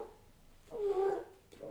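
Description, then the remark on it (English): A person softly imitates a bird's purring call: one brief, low, trilling murmur, quiet, with no words spoken around it. It copies the little purrs the birds use to communicate. “little purrs. That's how they communicate.”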